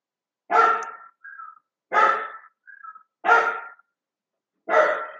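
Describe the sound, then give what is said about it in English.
An old dog barks at nothing, four times at an even pace, each bark loud, with short whiny squeaks slipping in between the first few barks. “Why is he barking? Because he was barking at nothing.”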